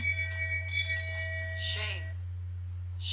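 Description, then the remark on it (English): A hand bell used as a shame bell rings out, struck once and then again shortly after. Its bright metallic tone lingers for a couple of seconds before a breathy rustle and a low steady hum underneath. “I'm gonna shame bell you for not getting it video.”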